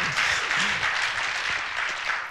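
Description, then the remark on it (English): A crowd claps steadily at a church service, a dense, even wash of applause at moderate loudness with faint voices or whoops underneath. “I hope you keep clapping after it's over.”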